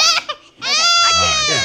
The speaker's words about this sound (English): When you go, get your baby. Your baby's here. Baby's crying.